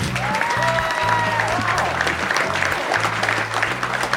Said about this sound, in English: Right now, welcome to the stage, a special guest for the Q&A section. Please give a roaring round of applause to our good friend from WWE Network, Holy Foley, Noel Foley.